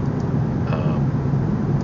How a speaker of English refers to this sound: I'm driving a car right now, however.